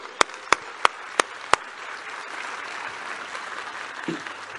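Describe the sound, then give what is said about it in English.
A church audience applauds money from small donation boxes used to help the church and local community, with several sharp claps standing out at the start before dissolving into steady, dense clapping from a large crowd that carries on evenly. “And I think that deserves a round of applause.”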